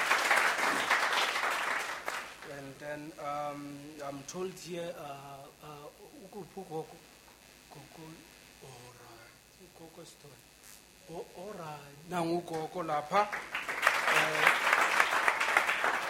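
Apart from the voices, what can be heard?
audience applause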